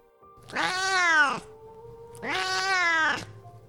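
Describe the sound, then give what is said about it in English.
Two long, drawn-out cat meows, each rising then falling in pitch with a strained, whiny tone, separated by a short pause; fairly loud, with no talking. “Right. I'm talking to a cat.”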